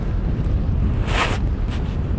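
Wind rumbles steadily and loudly against the microphone by open water, where a kitesurfer is getting ready to rig up a kite, with a short, hissing gust surging partway through and a fainter one just after. No one speaks.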